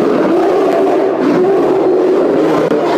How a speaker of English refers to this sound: And just two great swings, and you just cut deep into this bear's flesh, blood and blubber, and begin spurts out of it and spills across the floor as you attack it. The bear roars out in pain.